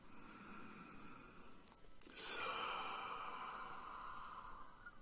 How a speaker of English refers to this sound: Closing our eyes, we're going to take in 3 more Ave Sol breaths and just bask in that energy. Let's breathe in.